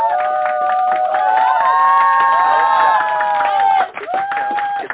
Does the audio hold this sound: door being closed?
no